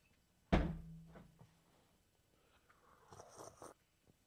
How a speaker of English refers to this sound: Slurp, slurp, slurp.